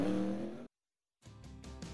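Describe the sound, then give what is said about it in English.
A NASCAR race car's engine roars loudly, drops out to brief silence during a pit stop where Sunoco fuel is added, then returns with a rising, revving drone as the car accelerates away. No one speaks. “Second can of Sunoco fuel in. He's down and away.”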